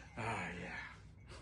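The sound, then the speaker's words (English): A strained, heavy exhale with a groaning, voiced edge, held for about a second before trailing off, fairly loud with no talking, from a man straining himself while holding it in his gut. “Why are you breathing heavy?”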